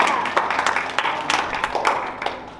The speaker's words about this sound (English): You can clap your hands. That's good.